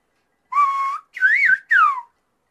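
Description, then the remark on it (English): Three short phrases of whistled English speech with rising and falling pitch glides, like the melody of spoken words, sound clear with brief silences between them and no talking. “It's actually whistled English, right?”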